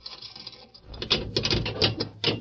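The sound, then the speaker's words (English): Metal clanking and ratcheting of the barred grill door of a jail cell being unlocked by Murph: a soft rattle, then a run of sharp clicks and clacks from a turning lock mechanism, moderately loud, with no talking. “They spoke a few words to the guard, and then Murph unlocked the grill door of the cell.”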